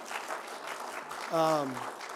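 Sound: audience applauding and cheering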